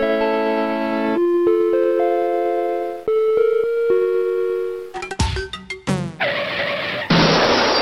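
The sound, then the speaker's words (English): A string of crash sounds from old Mac computers, played in the Mac Tracker app: sustained synthetic chord tones shifting every second or two, then stuttering glitchy bursts and loud hissing static at the end, with no voices. “The best one was some of the crash sounds.”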